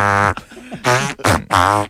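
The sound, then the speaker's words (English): A voice imitates fart noises with the mouth: three loud, buzzy, tonal blasts in quick succession, with brief gaps between them. “I mean, certainly celebrity, you can, in America, you can be a celebrity for farting the national anthem.”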